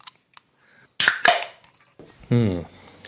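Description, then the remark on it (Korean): A can of Filite beer cracks open with one sharp pop and a short burst of fizzing hiss, then a brief voiced exclamation follows after a pause. “필라이트 한번 까보겠습니다.”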